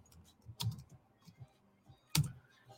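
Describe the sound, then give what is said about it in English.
Sparse typing on a computer keyboard: a handful of soft, irregular keystrokes with two sharper, louder clacks standing out, otherwise quiet, with no voices. “I'm just typing this in for my Instagram folks.”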